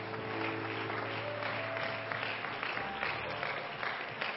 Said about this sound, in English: Number one, it is so good to see all of our guests that are here today. Glad that you're in the house of God. Everybody give our guests a good hand clap today.